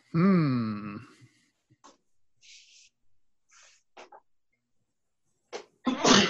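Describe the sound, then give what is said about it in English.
A loud sneeze with a drawn-out voiced wind-up, followed by quiet rustles and a few short, sharp breathy bursts near the end. “Bless you.”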